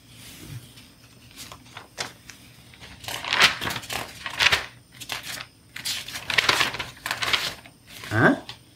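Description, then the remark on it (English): Paper pamphlets about parrots, found lying around everywhere, rustle and crinkle as they are picked up and looked at, in a run of irregular, crackly bursts that grow busier and louder over several seconds, with a brief low thump near the start. “What are these pamphlets lying around everywhere? Looks like trash to me. Let me take a look at them.”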